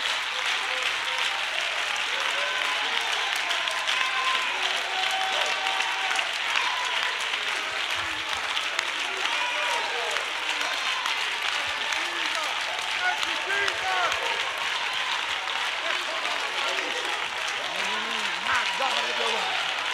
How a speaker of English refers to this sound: Clap your hands as loud as you can.